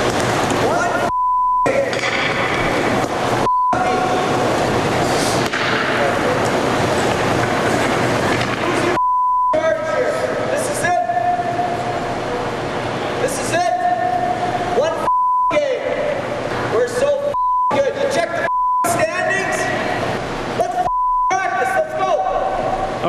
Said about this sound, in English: I'm sure you can guess what word was beeped out there.